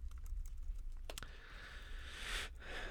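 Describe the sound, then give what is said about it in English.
A man types rapidly on a keyboard, a steady patter of clicking keys that speeds into a busy burst near the end. It is quiet, with no one talking. “He's typing feverishly over there something.”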